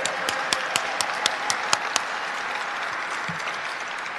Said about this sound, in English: the fact that you guys have pulled it out together as a team and not only did something amazing, accomplishing a state championship, but that you did this with an undefeated season, I really think you deserve a big round of applause. Congratulations.